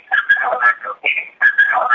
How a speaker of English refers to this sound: Oh, right. We hear her. We hear her through your phone. We can hear her. Yeah. Okay. And we have an echo.